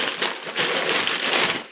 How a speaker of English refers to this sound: But it's dinosaur wrapping paper, so good find. I'm sorry for the crinkling that's about to happen. I'm not.